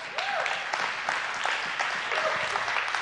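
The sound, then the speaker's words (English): A crowd claps in a dense, steady wash of applause for about three seconds, fairly loud throughout, with a few faint voices calling out over the clapping. “Y'all should have clapped for that.”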